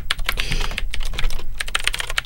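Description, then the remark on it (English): Rapid clacking of keys on a mechanical keyboard, typed close to the mic to demonstrate its sound, with sharp clicky strikes in quick irregular bursts and a brief pause midway. No voices. “I'll see if I can swivel the mic and show off some of the typing. You know, this is it's a mechanical keyboard.”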